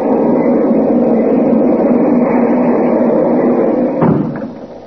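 A loud, steady rumble of a fast passenger train heard from inside the car, with a sharp clack like a door near the end before the noise eases slightly.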